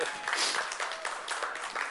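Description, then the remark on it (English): A crowd applauds in thanks for the coffee and donut team, a dense, steady wash of many hands clapping at once, with a few voices cheering faintly within it for about two seconds. “I'm trying to decide which applause got more, the worship or the donuts.”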